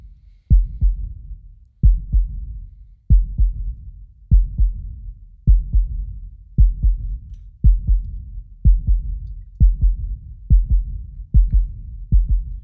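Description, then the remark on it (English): A deep, muffled heartbeat sound effect used as intro music thumps steadily in lub-dub pairs, roughly one beat per second, loud with a low rumbling boom and no voices. “All right, that creepy ass heartbeat.”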